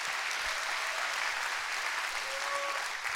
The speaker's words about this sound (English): Come on. Clap your hands to that. That's good stuff.